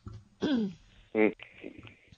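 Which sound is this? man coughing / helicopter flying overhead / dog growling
man coughing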